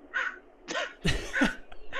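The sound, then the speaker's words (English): Harsh, raspy bird calls repeat in quick succession, three or four grating squawks sounding fairly loud, with no talking over them. “That's a really annoying bird too.”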